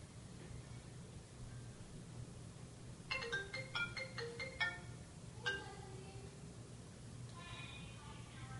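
A melodic phone ringtone chimes in quick bright note bursts, pausing and then starting again, set against a steady low hum of background noise at moderate volume.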